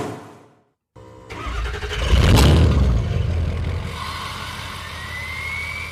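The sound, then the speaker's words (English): A large diesel truck engine cranks briefly, roars to life with a loud rev, then settles into a steady rumbling idle as a faint rising whine builds. No voices. “Got a diesel truck?”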